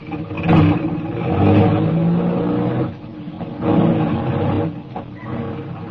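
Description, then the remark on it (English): A car engine revs loudly in rising and falling surges, a deep growling roar that dips briefly before swelling again as the vehicle pulls away. “We drove for about 20 minutes, and we stopped at a garage, a big garage, four stories high, with elevators for parking cars on different levels.”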